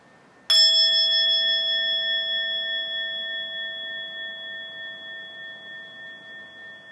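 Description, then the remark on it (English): A bell, brought along for a guided listening and relaxation exercise, is struck once and left to ring, its clear, pure tone sustaining and slowly fading with a gentle wavering shimmer over several seconds, with no other sounds. “So I'm going to ring the bell a couple times.”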